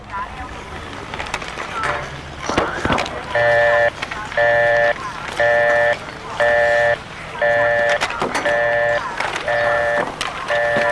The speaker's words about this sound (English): One more Bell System busy signal deserves mention before we go on. The best description of this one I ever heard came from a 10-year-old girl named Joanna who said, "It sounds like an Englishman saying, 'Bird,'" over and over.